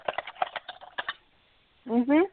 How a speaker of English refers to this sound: I'm going to stab you if you don't stop typing. I have no fake nails on. That's actually me typing with regular fingers, just so you know.